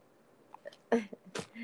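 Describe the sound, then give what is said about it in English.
A phone is set down with two short, scuffing clunks about half a second apart, followed by faint muffled handling noise. “No, I just put my phone down for a second.”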